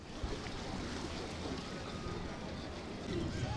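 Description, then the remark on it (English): A boat out on open water on the bay: a steady low rumble blends with constant wind buffeting and the wash of water, continuous throughout, with no clear talking. “I've been coming out here in my boat, the Canoosicle, for, 10 years probably, I guess.”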